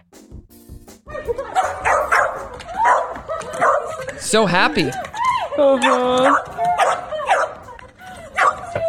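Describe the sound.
A dog barks and lets out high, wavering whimpers and excited whines, loud, with a person's happy voice talking over the commotion, as the dog is reunited with its owner after turning up at a shelter near Los Angeles.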